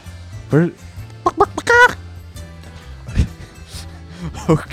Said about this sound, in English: Okay. There's a live chicken back here.